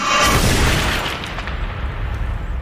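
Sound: bomb explosion sound effect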